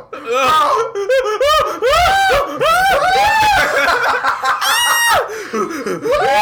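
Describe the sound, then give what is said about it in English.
A voice imitates a Sand People scream: loud, warbling, rising-and-falling howls repeated in quick bursts for several seconds, strained, with a laughing edge. “We the sand people, right?”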